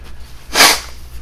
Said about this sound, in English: Sorry, I had to blow my nose. That was part. I might have to edit that out.